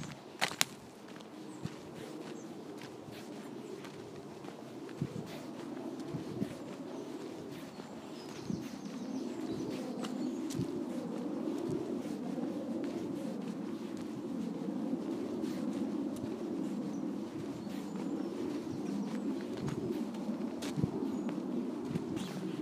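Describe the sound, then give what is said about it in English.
Pigeons coo steadily in low, warbling tones, joined by scattered sharp taps and flutters as a pigeon flies up into the air. The cooing runs continuously throughout, and no one speaks. “Pigeon flies up in the air.”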